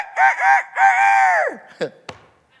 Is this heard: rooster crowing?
yes